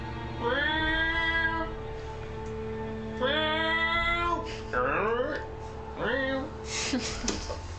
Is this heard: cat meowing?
yes